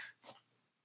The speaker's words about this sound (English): Sorry, guys, just clear my throat.